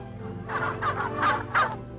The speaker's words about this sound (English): It's a lucky bird that graces the president's table, and he's gobbling with excitement at the prospect.